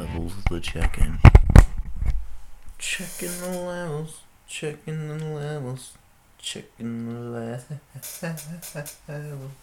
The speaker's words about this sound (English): Yeah, it's a fucking chair, man. You can hear that fucking chair, man.